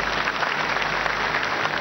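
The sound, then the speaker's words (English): A church audience claps for Jesus Christ in a dense, steady burst of applause that stays loud and even throughout, with no talking over it. “Let's clap for Jesus Christ.”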